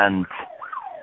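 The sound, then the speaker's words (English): A voice mimics a police car siren passing by: a brief voiced burst, then a single wavering wail that rises and falls over about a second. “And the police car just went past.”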